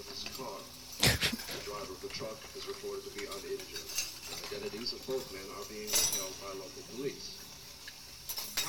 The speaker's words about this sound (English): Doing a lot of silverware. Maybe that's dishwashers in the back. Sloppy eater.